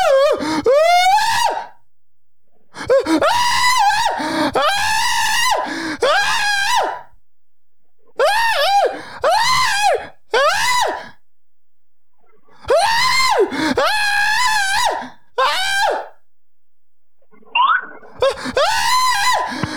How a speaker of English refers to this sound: All right, let's do a screaming segment. All right. Fucking. All right, okay. Oh, yeah, let's scream at someone. I haven't screamed at anyone for a while.